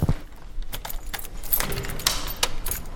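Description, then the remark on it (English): Keys jingle and rattle as a front-desk worker locks a door at night in Jerusalem, a series of bright metallic clicks and clinks spread irregularly over a few seconds, with no voices. “Can I just record you locking the door?”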